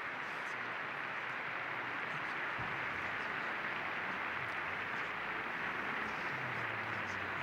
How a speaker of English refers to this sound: And that's when John Paul II received his first tribute after his death, an endless applause.